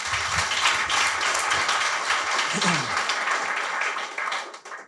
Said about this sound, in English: So from Voltage to Strike to River to Zebedee to Bitcoin Talent Company, thank you so, so much. Another round of applause for those folks.